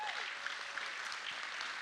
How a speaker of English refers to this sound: If you believe that, give the Lord a hand clap.